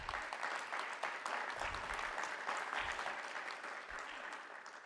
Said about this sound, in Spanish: Un aplauso, por favor.